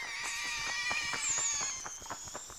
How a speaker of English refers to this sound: And there's a screech. It sounds like a mouse. But I know better. It's a bat.